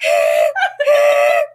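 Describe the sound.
A person vocally mimics a train whistle: two loud, sustained, breathy hoots with a rich harmonic, chord-like tone, separated by a brief break, the second trailing off.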